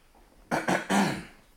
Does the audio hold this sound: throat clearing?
yes